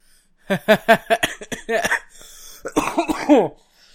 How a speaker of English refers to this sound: And that's what happens when I laugh. Although I'll be editing that out so I don't ear rape people, but... What? Coughing.